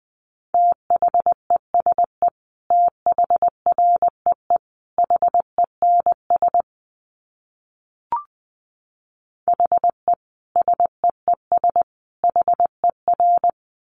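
Morse code sent at 20 words per minute as a steady mid-pitched tone, keyed in quick dots and dashes grouped into short bursts, with one long pause broken only by a faint click.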